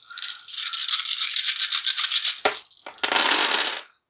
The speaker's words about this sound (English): Getting all of its dice ready for this roll.